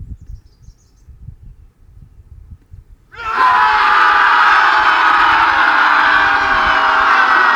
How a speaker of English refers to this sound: shrieking and howling erupt from the forest. The same battle cries I heard the night James was killed.